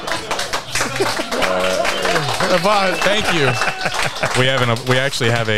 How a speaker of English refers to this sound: if you guys want to make noise like there's 50 of you, that'd be great. Let's go. That means clap.